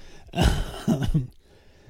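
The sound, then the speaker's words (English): A short fit of coughing: three harsh, breathy bursts in quick succession, the first strongest, then two shorter ones, followed by a quiet pause. No one speaks. “Man, I cannot quit coughing.”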